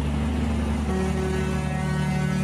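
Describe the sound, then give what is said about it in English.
A logging truck carrying a load of logs on a rural road blares its horn for an excited kid in one long, unbroken blast, a loud, steady, low-pitched tone with a rich buzzing edge that holds for the whole moment, with no one speaking. “Do you still do that as an adult, or when you were a kid, did you pull for the truck horn?”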